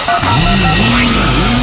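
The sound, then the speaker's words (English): A loud, steady engine roar with a low droning pitch that rises and dips in waves, like a car revving for a time-travel sound effect, continuous throughout with no talking. “We're going to go travel back in time.”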